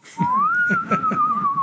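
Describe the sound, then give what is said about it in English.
A single clear, sustained whistle from a smart home device woken by laughter glides upward and then holds a steady tone, with soft low murmuring and faint thumps underneath throughout. “Wait, I hear some whistling.”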